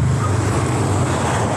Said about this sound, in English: Whoa! The fast cars as well. Yeah. Yeah, there's no pavement here, so we're just walking along the road and like a car just swerved past us, an ambulance.